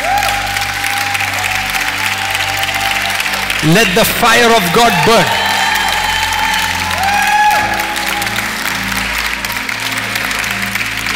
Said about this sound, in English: 15 seconds, clap your hands and worship the Lord.